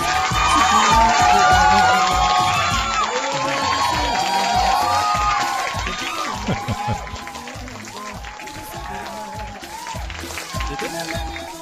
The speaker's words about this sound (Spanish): Muy bien. Vamos a dar un aplauso ahí.